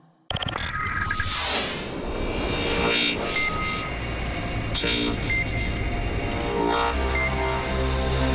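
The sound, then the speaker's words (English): Loud, continuous roar of racing sports car engines at Lime Rock Park in Connecticut during the IMSA WeatherTech SportsCar Championship, with high-pitched whining notes that sweep down in pitch as cars pass, and several engines overlapping throughout. No one speaks. “Great to hear the noise of sports car engines back here in Connecticut.”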